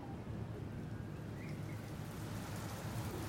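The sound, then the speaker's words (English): Heavy rain begins to fall, pouring down steadily without a break, a dense hiss over a low, continuous thunder-like rumble, with no voices. “Heavy rain is beginning to fall.”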